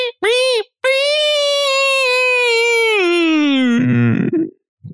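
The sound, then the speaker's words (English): A voice imitates a dying pig's squeal: a brief squeak, then one long, loud, strained, high wail that slowly sinks in pitch and breaks into a rough, gurgling sputter at the end. “That was a worse impression of a pig.”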